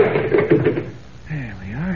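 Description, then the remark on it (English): A locked locker door being wrenched open: rattling and clanking bursts for about a second, then a short strained vocal sound as it gives way. “The door is locked. Huh? I'll just have to wrench it open.”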